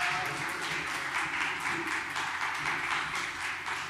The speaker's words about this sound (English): I welcome him to share with us today. Praise God. Clap your hands. Welcome him. Praise God.